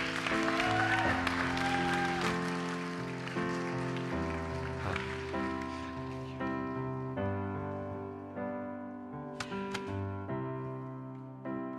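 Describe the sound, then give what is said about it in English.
An audience claps steadily in applause for the Lord during a church service, a dense, rain-like patter of applause over sustained organ or keyboard chords, strongest early on and gradually thinning as the music carries on. “Can we get an applause for the Lord, please?”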